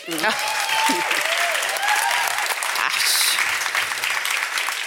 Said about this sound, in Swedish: Applåd.